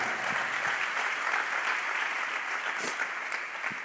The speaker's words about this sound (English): Somebody clap your hands. I feel like I'm ministering already.